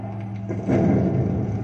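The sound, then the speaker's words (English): A steady low aircraft engine drone, then about halfway through a heavy mechanical clunk as landing gear slams into lock, followed by a louder, rougher rumble that carries on to the end. “Suddenly release the horizontal lock and try to slam the gear into lock position.”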